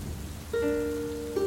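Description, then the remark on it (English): Steady rain hisses in a dense, even wash, with a sustained low tone entering partway and holding beneath it. No voices are heard. “What I wouldn't give right now to allow this rain to wash all the shit away.”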